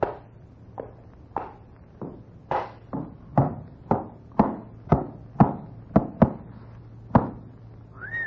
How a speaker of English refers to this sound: Come on in. I have got a horse out here. Bring him in.